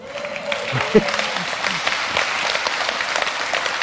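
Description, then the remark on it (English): An audience breaks into steady applause, a dense wash of many hands clapping at a fairly loud, even level, with a few murmuring voices mixed in. “Hey, I'm not asking you to clap for me.”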